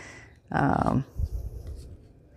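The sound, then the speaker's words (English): A short, scratchy rasp of a craft blade dragging through stiff chipboard for about half a second, followed by softer scraping and faint rustling, with no talking. “Yeah, this is not so bad when you're just doing a little cut. I guess you could actually just use scissors to cut the paper too, or the chipboard.”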